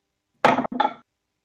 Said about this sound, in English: Are you rolling metal dice? No. Sound really loud. Plastic dice in wooden tray.